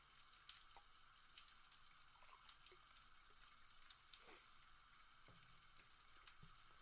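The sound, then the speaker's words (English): IPA beer pours into a small plastic cup, giving a steady fizzing hiss sprinkled with tiny crackling pops and faint liquid trickles, with no voices. “Let's pour a little bit out of this here and see what it looks like.”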